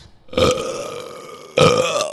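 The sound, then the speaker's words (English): Two loud, drawn-out burps, the first stretching for about a second and the second following shortly after with a rough, throaty rasp, with no talking. “Oh, I wish I could burp now. I managed to command one that time.”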